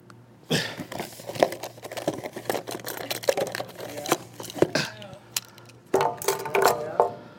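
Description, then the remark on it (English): Busy rummaging as items are pulled out: crinkling and rustling mixed with sharp clicks, knocks and small clattering objects, ending with heavy bumps and scraping as a microphone is laid down. “Now, I'm going to pull out some stuff. I'm going to lay the mic down.”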